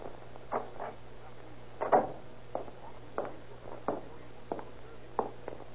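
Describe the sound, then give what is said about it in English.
Someone walks along a hallway: a series of soft, irregularly spaced footfalls, around eight thuds with clicky edges, over a steady low hum and no talking. “I hear someone in the hall now.”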